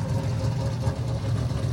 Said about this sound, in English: That would be the Andretti LMP3 car. Yeah. Yep. Yeah, big V8.